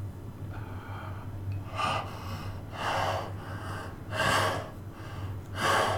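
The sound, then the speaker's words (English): A voice imitates very deep, heavy breathing: four or five long, loud rasping breaths in a slow, steady rhythm, over a low constant hum. “He's breathing really, really deeply.”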